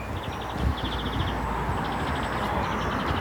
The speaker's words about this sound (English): Right, I'm just sneaking through the little passageway here onto London Road. Astonishingly quiet, except for this car I can hear approaching.